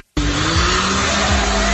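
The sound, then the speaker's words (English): A dune buggy's engine bursts in loud, revving hard and steady as it does donuts in the water of a riverbed, a broad rushing wash under the motor's whine. No one speaks. “Oh, they're doing donuts in the water. And then truck comes by above and clears them all out.”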